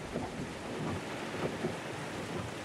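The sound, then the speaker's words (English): Heavy driving rain pours steadily in a dense, hissing wash during a car drive, the windshield wipers working at full speed, with low rumbles of thunder rolling underneath throughout. No voices, just the continuous enveloping storm. “It was slow going in the driving rain, the windshield wipers working at full speed.”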